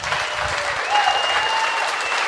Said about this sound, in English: Thank you. Why aren't you clapping, sir? Do you disagree with my pragmatism?